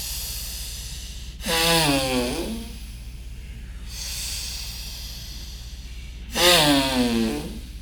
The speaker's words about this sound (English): Now start inhaling very deep, long in the hissing sound, both from the belly and the chest.